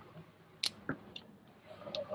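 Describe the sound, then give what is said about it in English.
Plastic gaming dice being rummaged through as they are taken out, with a few sharp, irregular clicks and clacks against a quiet background. “Get my dice out here.”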